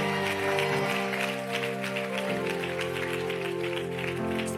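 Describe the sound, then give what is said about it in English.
An audience claps their hands in a steady, busy patter over sustained organ or keyboard chords, the clapping and music holding at an even, fairly loud level throughout. “Give me a hand clap.”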